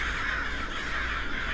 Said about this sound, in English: The nearby screeching of the crows startled her, like a sudden siren on the streets of a city.